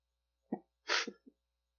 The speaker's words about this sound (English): Hey, when somebody sneezes, what do you say? Gesundheit.